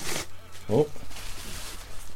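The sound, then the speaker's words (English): A package is torn open by hand instead of with scissors: a short, harsh ripping burst at the start, then a brief vocal sound and faint rustling of packaging. “I was going to use the scissors, but I don't know why I just started ripping this open here.”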